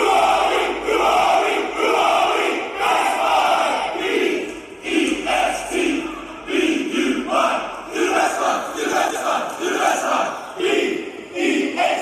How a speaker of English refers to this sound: I remember when I worked at Best Buy, they made us all come in early on a Sunday and hold hands behind the store and yell. Here's a sample of a team building exercise. One from Best Buy here.